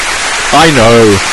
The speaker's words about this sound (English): She went, hang on, you've got an applause button. Round of applause for Yuji Naka!